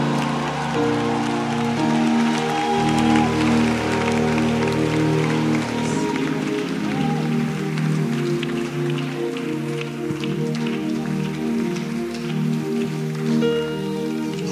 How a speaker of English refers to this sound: Keep clapping those hands to Jesus.